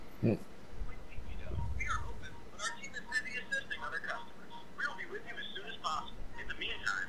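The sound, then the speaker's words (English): A phone rings on and on with no one picking up, its bright electronic tones mixed into a busy, murmuring background of indistinct voices. “Why don't they just answer that?”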